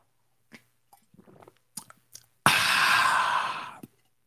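Someone sips coffee: a few faint clicks and mouth noises, then one loud, airy slurp lasting over a second before stopping.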